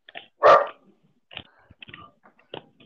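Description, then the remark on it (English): A dog, reacting to hearing somebody next door, gives one loud bark, followed by a few softer, scattered yips and whines over the next couple of seconds, with no talking. “I can hear the dog barking in the background.”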